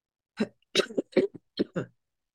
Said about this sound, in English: Had this little cough for a minute. And it's, listen, this little cough is just because I'm chill. And so my nose is running.